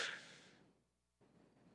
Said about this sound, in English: In fact, do it real quick. Take in a big breath.